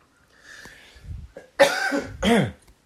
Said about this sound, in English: So, because these people spray this shit, it's got me coughing.